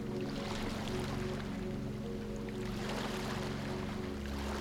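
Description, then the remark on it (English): Ocean waves wash steadily in a continuous rushing roar, swelling slightly toward the end, with a low, steady droning hum underneath and no voices. “As you listen to the waves, repeat in your mind or out loud the following affirmations.”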